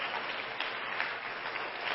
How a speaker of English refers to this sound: Why don't all the home folks give all of our guests a good hand clap today?